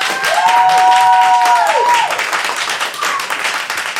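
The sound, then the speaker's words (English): A crowd applauds steadily for about four seconds as a vote that rocks are better than rock, a dense wash of clapping, while a sustained high whistle rings out over it early on, then a shorter whistle follows. “So, ladies and gentlemen, if you believe that rocks are better than rock, I would like you to applaud now.”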